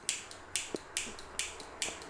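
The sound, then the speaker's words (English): A butane lighter clicks repeatedly without catching, a steady series of sharp, bright snaps about twice a second, each followed by a softer click, with no voices. “Uh-oh. That thing's just clicking over there.”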